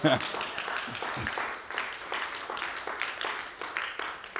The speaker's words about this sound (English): Now, everybody give God a hand clap of praise.